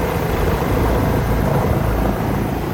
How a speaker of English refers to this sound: Paradise Helicopters' …, our pilot and guide, giving us rare access